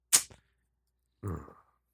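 A phone notification chime: a sharp, bright ping, then about a second later a softer, lower tone that fades quickly. Fairly quiet, with no voices.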